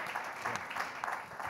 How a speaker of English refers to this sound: Applause, please, for Mr. Papandreou, if you would.